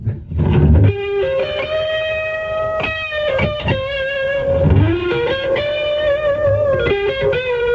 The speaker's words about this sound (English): Usually you can hit them, and you can hear that spring reverb.